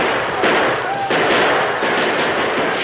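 Dense, continuous gunfire crackles and roars in a chaotic battle, with overlapping shots blending into a loud, sustained wash of noise and a few sharper bursts standing out.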